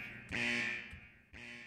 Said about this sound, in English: Breaking news! Sound the alarm!